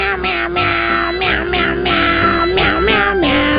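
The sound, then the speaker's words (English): Cats meow a Christmas carol on a Christmas carol CD, their loud, drawn-out cries sliding up and down in pitch to trace a continuous melody over a steady low backing. “The office that talks like a cat, singing your favorite Christmas carols.”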